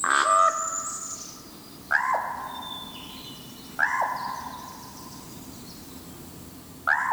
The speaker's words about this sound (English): In Oregon's Mount Hood National Forest, far from Edgar Allan Poe's birthplace in Boston, Jeffrey Keller recorded this common raven's call of Nevermore.